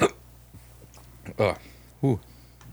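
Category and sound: human body sound, hiccup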